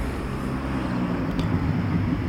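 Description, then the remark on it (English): A modified Domino's pizza car rumbles past, its deep, throaty engine noise loud and steady throughout with a slight swell midway, and no voices over it. “Well, that Domino's pizza car was tricked out.”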